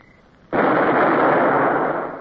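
A single heavy naval gun shot, fired by a ship's gun crew, bursts in after a brief quiet moment, a sudden loud, broad roar echoing off the hills that holds for over a second before slowly starting to fade. No voices.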